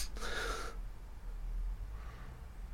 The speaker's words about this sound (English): … is sniffing. Can I smell you? … is like, what a nice fucking couch. Can I have a sniff?